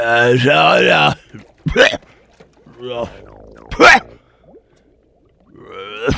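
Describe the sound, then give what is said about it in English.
A voice mimics moaning heard coming from a bedroom: several drawn-out, wavering vocal moans with sliding pitch, broken up by short, sharp breathy gasps, moderately loud, with no actual words. “We start hearing moaning coming from the bedroom.”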